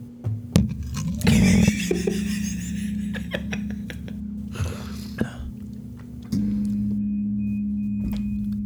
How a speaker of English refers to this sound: There goes my dryer. God. That's so loud. Oh, laundry's done.